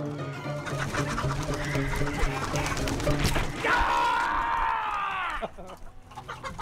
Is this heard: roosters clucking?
yes